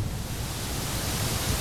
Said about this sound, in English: Well, your alternatives are pink noise.